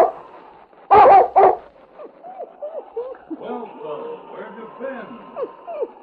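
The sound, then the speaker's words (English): A dog gives two sharp, loud barks close together, then breaks into a long run of high, plaintive whimpers and whines that keep going steadily. “You found your dog yet, Sergeant Preston?”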